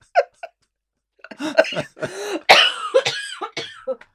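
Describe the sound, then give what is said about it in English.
A choking coughing fit: two short, sharp coughs, a brief pause, then a longer run of harsh, sputtering coughs and strained gasps with no talking. “This made you choke now.”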